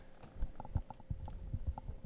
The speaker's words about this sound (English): They just, are you guys hearing that clicking? Is that coming off of yours?